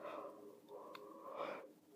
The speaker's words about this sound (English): I'm just going to keep that yawn in. The stepping down makes it, makes me so tired.